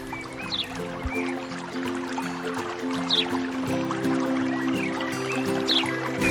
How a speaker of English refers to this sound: I'm here at Union Plaza along the Antelope Creek. The Mopac Trail's right next to me, and I'm sitting by a waterfall that connects two ponds.